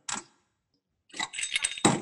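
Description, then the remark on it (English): Ice cubes are put into a drinking glass: one quick hard rattle, a brief pause, then a longer jumble of bright, overlapping clinks and clatters. No one speaks. “I like to put ice over and in my glasses right away.”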